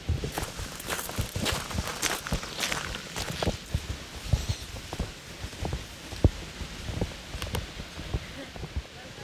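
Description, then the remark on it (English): Footsteps crunch along outdoors at a steady walking pace around a singer's childhood home in light rain, with a soft ambient hiss of open air and occasional faint voices. “I left Shima and Brian and sort of wandered around for a bit.”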